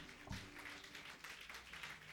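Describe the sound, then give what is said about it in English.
A church audience claps their hands together for Jesus during a sermon, a steady, dense patter that carries on throughout. “No, you are clapping for a God that is good because of his goodness.”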